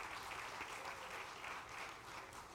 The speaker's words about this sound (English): Let's give all the single mothers a big hand clap.